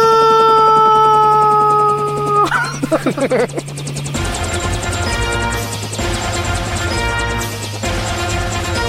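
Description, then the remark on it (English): A loud helicopter sound effect with steady rhythmic rotor chopping and a low engine drone, preceded by sustained synth tones and a crashing hit. “J-Mark, cut the helicopter.”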